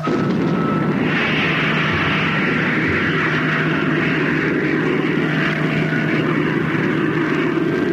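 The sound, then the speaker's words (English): A spaceship's rocket engine fires with a loud, steady roar that swells after the first second and holds for several seconds, a deep rumble carrying a low droning hum, with no voices. “Okay. Firing in 10 seconds. Five, four, three, two, one, contact!”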